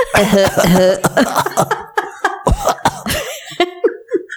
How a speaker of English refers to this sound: These days, I don't think the cough would work. I don't think the cough exactly, working.